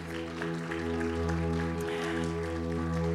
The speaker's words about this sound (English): I want to have my incredible team come up. Would you guys just give them a round of applause real quick?